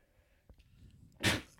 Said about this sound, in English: I just sneezed.